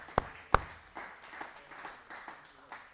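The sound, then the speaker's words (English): An audience claps in praise to the Lord during a sermon: two sharp, loud hand claps ring out first, followed by softer, scattered claps trickling in unevenly over a low background murmur. “Why don't you give the Lord a hand clap of praise right now?”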